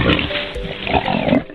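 Wild boar grunting and squealing in a harsh, continuous burst, loud, with rough snorting textures and a few higher squeals over about a second and a half, no talking.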